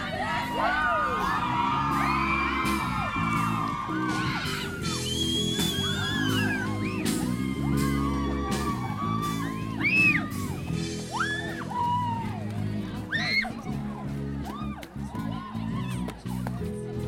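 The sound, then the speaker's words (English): A large crowd of young people on a street protest march organised by Byron High students roars steadily, many voices whooping, yelling, calling out and chanting for their rights together, loud and continuous throughout with rising shouts breaking above the din. “In this segment, you'll meet the organisers from Byron High, hear the roar of the crowd, the street chanting for their rights, and learn what it takes to organise an event like this”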